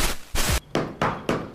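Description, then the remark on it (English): A cab driver knocks on a door: a series of about five loud, heavy knocks in a steady rhythm, each a dull thud with a short ringing tail. No voices are heard. “At the card table, we get a little bit of banter between Ray and Dutch when there's a knock at the door.”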